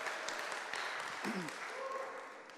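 A round of applause from a group fills the whole clip, a dense, steady wash of clapping that stays even in loudness, with faint voices surfacing briefly underneath.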